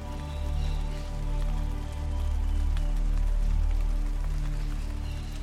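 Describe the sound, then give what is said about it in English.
Steady rain patters on a tent in the rainforest after sunset, scattered drops tapping over a constant hum of insects and frogs, with no voices present. “And now, it's beginning to rain, and you can hear the rain on your tent.”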